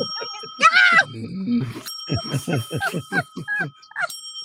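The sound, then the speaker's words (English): A bright, ringing bell sounds with a sharp, metallic burst, its tone lingering faintly while muffled voices talk and babble over it. “And I just have so many memories of, like, somebody rang a bell recently and I felt like a dog.”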